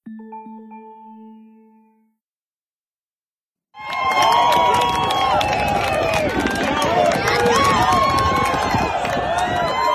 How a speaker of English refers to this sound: The cheering you hear is from an Instagram post on March 13th from Jerry Falwell Jr.'s feed.